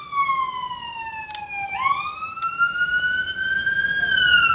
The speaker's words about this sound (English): That's going to be coming right by your apartment, yep, isn't it? Yep. Oh, yeah, he's using both the sirens, too.